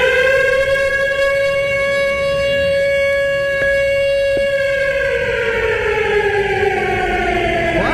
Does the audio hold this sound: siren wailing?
yes